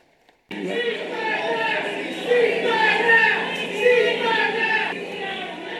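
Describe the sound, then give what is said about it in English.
A large crowd chants "four more years" together to drown out protesters calling for a ceasefire in Gaza during President Biden's speech at Mother Emanuel AME Church in Charleston, South Carolina. It is a dense wall of many voices that starts abruptly and stays loud throughout, swelling in rhythmic surges over the competing shouts. “You hear the crowd afterwards. Folks tried to drown out the protesters by chanting four more years.”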